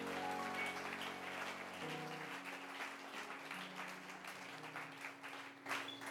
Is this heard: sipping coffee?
no